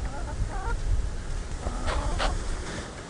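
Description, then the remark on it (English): Several hens, kept with a cockerel, cluck and squawk in short bursts over a steady low outdoor rumble, with a couple of sharper calls standing out near the end. “You do have a pecking order amongst the hens. The cockerel does seem to keep everyone slightly calmer.”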